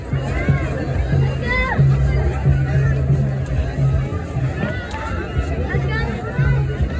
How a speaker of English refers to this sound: he saw a crowd of people gathering by the hundreds near the lighthouse next to Friendship Park.